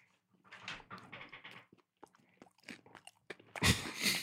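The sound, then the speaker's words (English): Loud crunching as someone bites and chews hard candy at the microphone, a string of crackly bites building to a sharp, bright crunch near the end. “I thought the listener might want to hear the crunch.”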